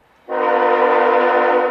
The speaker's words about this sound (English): On a freezing cold night in the middle of the woods, about a dozen climate activists are standing on train tracks in West Boylston, Mass. This train is moving about 10 miles per hour.